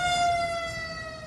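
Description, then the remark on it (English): An emergency vehicle siren wails steadily outside, a sustained high tone with strong harmonics, fairly loud and slowly fading, with low rumbling traffic noise underneath. “Let's take a moment of sirens.”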